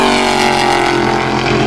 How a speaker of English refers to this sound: And you don't need me to tell you what that was, belching its way around the track on the base, as ever, the Corvettes.